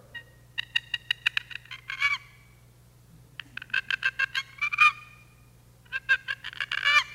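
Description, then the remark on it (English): A human voice imitates the gobble a tom turkey makes in answer to a turkey call: three rapid, rattling bursts of throaty, nasal pulses, each ending in a louder warble, over a faint steady low hum. “Well, when you do that call, then the gobbler will make a sound like, and I know that sounds like a post-nasal drip tom turkey, but anyway, it's the best turkey call I can muster up, okay?”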